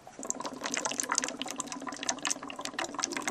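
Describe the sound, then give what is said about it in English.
Continuous bubbling and gurgling as oxygen gas streams into a water-filled bottle, a dense patter of small pops and splashes at steady loudness, with no voices. “And now the bottle of water is drinking oxygen.”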